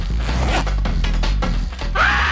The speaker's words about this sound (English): I think my favorite scene is when he is, he's like peeing and he zips up his fly and he gets his balls and his shaft stuck in the zipper.